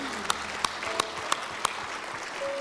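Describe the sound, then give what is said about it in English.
An audience applauds God after a prayer, steadily in a dense, continuous wash of clapping, punctuated by five sharp, louder claps landing at an even rhythm for the first half. “Hey, can we give God a round of applause?”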